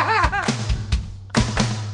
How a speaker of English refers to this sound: I hate you guys simultaneously bang the table.